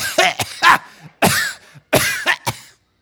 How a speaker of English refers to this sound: Cough all over these people if I want to. Look at me. It's not COVID. I got a sinus issue.